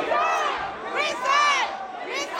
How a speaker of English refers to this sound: A crowd of mostly African-American and Latino protesters packed the chamber and angrily called for the resignations of the three Latino members who were caught on tape making racist and crude comments.